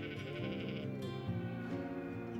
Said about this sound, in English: Then they climbed the barnyard fence and made haste to the pasture, where Grandfather kept his woolly sheep. "Baa," said the sheep when they saw the children. But then they always said that, no matter what happened.